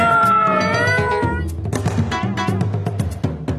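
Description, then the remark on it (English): Cats screech and yowl in a loud, wavering cry that slides in pitch, then break into a chaotic tumble of shrieks and thumping scuffles as screens, statues and bowls are knocked over. “Loud sniffing and scratching noises, which was followed by the most terrible screeching and screaming.”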